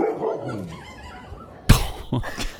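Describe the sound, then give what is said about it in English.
After a few seconds of faint, soft whining, a mother dog suddenly lets out a loud, sharp bark at her puppies as they try to follow her, followed quickly by a second, shorter bark that sends them back. “And so this is a mama dog who's trying to go and just, you know, chill out somewhere away from her puppies.”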